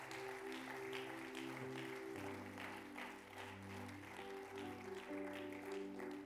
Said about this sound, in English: Would you give a hand clap of praise for God?